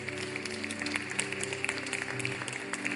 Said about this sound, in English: If there's somebody standing close to you, I want you to clap your hands if you see it. If you see someone waving.